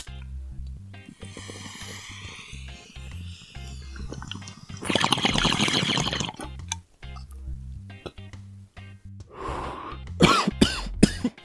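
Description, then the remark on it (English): A water bong gurgles and bubbles steadily, followed by a long, breathy exhale and then a quick burst of several harsh, loud coughs at the end. “Oh yes, that is my bong.”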